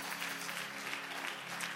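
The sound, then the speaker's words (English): An audience claps steadily in praise of the Lord at an evening church service, a dense, continuous wash of applause, many hands at once at moderate volume, with a faint low hum underneath. “Why don't you give the Lord a hand clap of praise in the building here tonight?”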